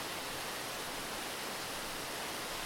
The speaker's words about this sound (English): Oh, where did this waterfall come from? Has this always been here? This is not a normal waterfall.